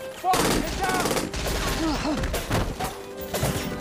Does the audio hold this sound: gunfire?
yes